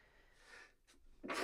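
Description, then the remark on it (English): A single sneeze: a breathy intake builds up, a short catch, then a sharp, noisy burst of air at the end, with no talking. “every time I sneeze, I feel like I lose $5”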